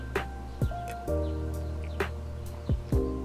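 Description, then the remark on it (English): Several short, sharp bird chirps pop up at irregular intervals over a steady low outdoor hum, moderately loud, with no talking, outdoors where many birds and squirrels are about. “A lot of squirrels and birds out here.”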